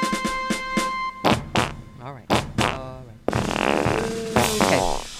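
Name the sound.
fart sound effect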